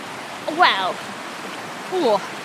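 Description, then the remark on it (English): A Welsh mountain stream rushes steadily over rocks, a constant wash of water, while two brief bursts of voice rise over it. “A quest to see salmon leaping in a Welsh mountain stream”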